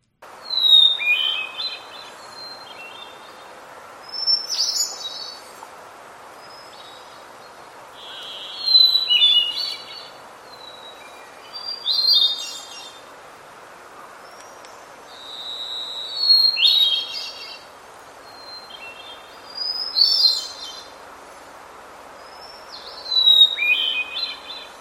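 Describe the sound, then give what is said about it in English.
A hermit thrush sings about seven flutey, rising phrases, one every few seconds, clear and louder, closer to the recorder, while a second hermit thrush sings back and forth in the background and a couple of long, buzzy varied thrush calls sound. “That was a hermit thrush, and you might have noticed a couple of calls of the varied thrush there.”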